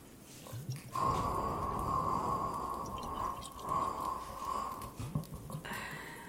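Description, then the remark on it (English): Rapid, dense tapping on a hollow rubber dog ball with holes, producing a steady, ringing mid-pitched hum over a soft, squishy patter for about four seconds, with no talking. “So it's a dog ball, but it's a clean. And I found that I can tap on it and it makes funky sounds.”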